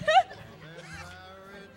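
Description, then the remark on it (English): A person imitates a cow's moo with a short, loud burst at the start, then a drawn-out, wavering vocal low that trails off, with no other sounds. “Maybe a cow.”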